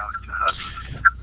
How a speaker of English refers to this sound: I'm going to turn your mic off just for a second. I'll give it back to you because we're getting an echo.